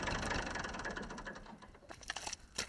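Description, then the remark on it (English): A very old, classic red Massey Ferguson 35 tractor engine chugs with a steady, rapid mechanical rhythm on an organic farm in County Kildare, then is turned off, winding down and fading, leaving a few scattered clicks and rattles. “That's a very old tractor. So it's a classic red Massey Ferguson 35.”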